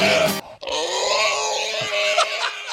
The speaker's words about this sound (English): You just found a really good one. That sound, that one. Is that the same one you've been playing? No, this is, I found like a longer extended. A longer horse one? That's the perfect sound. Yeah, horse does not sound healthy.